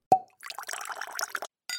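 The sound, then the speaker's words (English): A single bright wine-glass clink rings briefly, followed by a second of wet slurping sips of wine, an Oregon Pinot Noir, then a short, sharp glassy tap at the end. “So grab your glasses and let's have a sip.”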